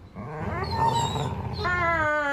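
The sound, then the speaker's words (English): A dog, Zappa, with vocal cords sore from barking, whines in a high, drawn-out tone, its voice wavering up and down, then breaks into a second, steadier whine. Fairly loud, with no one talking. “His vocal cords are sore from all that barking.”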